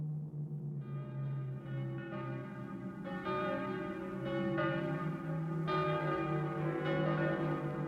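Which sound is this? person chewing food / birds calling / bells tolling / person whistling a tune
bells tolling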